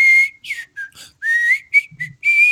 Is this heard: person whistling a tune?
yes